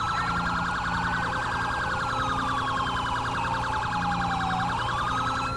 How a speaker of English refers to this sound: Okay, we're going to downgrade since he has a siren going right now in the front.